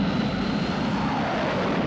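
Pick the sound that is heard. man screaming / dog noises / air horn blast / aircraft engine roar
aircraft engine roar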